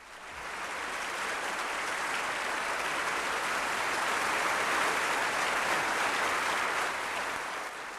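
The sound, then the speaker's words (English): A crowd applauds steadily, many hands clapping at once in a dense, continuous patter that swells in and holds at a fairly loud level for several seconds before tapering slightly. “If not, fare jovially, and clap your hands.”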